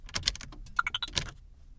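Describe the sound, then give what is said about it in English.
Quick clicks of buttons being pressed on an all-electric car's keypad to enter a secret code before the car is started, followed by a short run of rising electronic beeps, fairly quiet, with no one speaking. “First, I'm going to punch in the secret code.”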